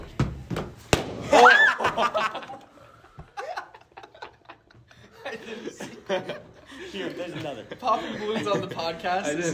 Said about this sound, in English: Here, there's another. Popping balloons on the podcast. I didn't see that coming.